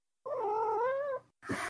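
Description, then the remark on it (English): A cat lets out one long, drawn-out meow with a wavering pitch, fairly loud, followed by a short breathy, raspy sound after a brief pause. No one speaks. “Yes, kitty cat.”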